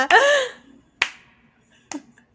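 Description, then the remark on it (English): Slow, sparse, sarcastic hand claps after a long pause: sharp, dry smacks spaced about a second apart, with a brief voiced sound at the start overlapping the first one and quiet pauses between. “There's a long pause and then a sarcastic clap from the unhittable Babylon Brown.”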